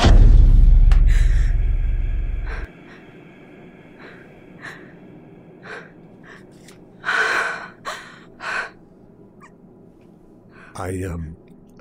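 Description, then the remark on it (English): A few sharp, breathy gasps and ragged exhalations come in irregular bursts, close and fairly loud, after a brief low rumble at the start. “And suddenly I'm back in that hallway again, panting and sweating and shocked and elated and afraid.”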